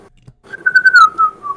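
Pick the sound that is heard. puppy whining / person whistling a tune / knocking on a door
person whistling a tune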